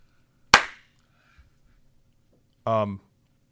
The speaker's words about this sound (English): Probably 12 minutes of editing. So I'm going to clap really loud so we can cut that.